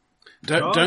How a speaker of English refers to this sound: Bless you.